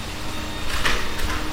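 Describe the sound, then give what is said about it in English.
A vacuum cleaner drones steadily on the stairs, its broad whooshing hum swelling louder for a moment midway with a brief higher whine, then settling back. No one speaks. “His old mate just on the stairs with the vacuum.”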